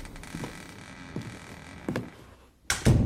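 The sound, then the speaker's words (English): A few dull, muffled knocks spaced about a second apart, then a brief pause and a louder thud of a door banging shut, with no voices. “So most often we'll experience hearing things, footsteps, voices, doors opening and closing, or even sounds like furniture being moved around on the floor above you.”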